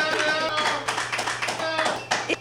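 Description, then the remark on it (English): A crowd claps steadily in a dense, crackling patter of many hands for a couple of seconds, with a few voices cheering beneath the applause. “Clap it up for that.”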